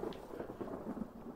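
A thunder sound effect rolls through as a deep, steady rumble with a hiss like rain, lasting just over a second with no voices over it.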